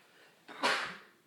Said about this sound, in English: Hold on. I have to sneeze. I don't want to get the coronavirus everywhere.